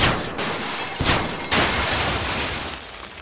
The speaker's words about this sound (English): Okay. We should be all right. Simple blaster rig for when the door opened.